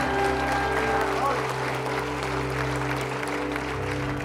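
An audience applauds steadily for several seconds, a dense, even wash of clapping that stays loud throughout, with low sustained keyboard tones humming underneath.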